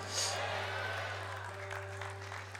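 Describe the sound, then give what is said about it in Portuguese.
An audience applauds for Jesus: a dense, continuous patter of many hands clapping at a fairly even loudness throughout, with a low steady electrical hum running underneath. “Aleluia, se for para aplaudir, aplaude de verdade, irmão.”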